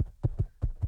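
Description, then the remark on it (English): A person imitates a goat's bleat, a fairly quiet, wavering vocal sound broken into four quick throbbing pulses within about a second, with no other talking. “Like, I'll pretend to be a goat, and you pretend like you're walking away, like you do the footsteps.”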